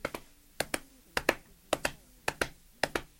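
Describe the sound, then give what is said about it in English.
Hoofbeats galloping out in a field, imitated by tapping: six quick double taps in a steady da-dum rhythm, crisp and clicky, with no voices. “Galloping, galloping out in the field, followed by this.”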